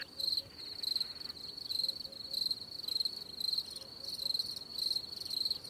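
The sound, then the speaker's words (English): A steady chorus of crickets chirps in shrill, pulsing bursts that swell and fade in a regular rhythm, continuous, with no voices. “You hear them crickets?”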